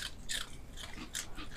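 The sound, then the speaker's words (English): A dog crunches a potato chip, several sharp, bright crackling bites in an uneven rhythm, each a short burst of crisp high-pitched crunch with soft chewing between. No one speaks. “I give you ice cubes and potato chips. Everything a growing dog needs.”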